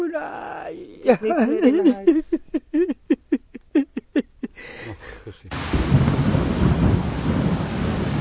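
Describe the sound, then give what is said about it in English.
In Bangladesh, a man cries out in anguished, rhythmic wails as his house is swept away by a river in a flood, then a loud, steady roar of rushing floodwater takes over, continuous, drowning out everything else. “this desperate man, recorded by Makbul, as his house is swept away by one of the thousand rivers”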